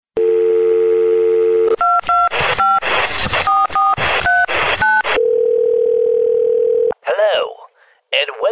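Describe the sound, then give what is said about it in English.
A steady telephone dial tone gives way to a quick run of touch-tone beeps, each a short paired pitch, followed by a ringing tone and then a warbling connection sound, loud; dialing out to the Movie Zone phone line of the Larry H. Miller Megaplex Theaters. “Well, that being said, let's dial out to the Movie Zone phone.”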